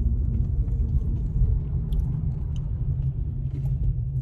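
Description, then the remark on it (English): A car's engine rumbles steadily from inside the vehicle, a deep continuous drone with faint road noise and a few small clicks over it, no one talking. “Because I'm going to park this car”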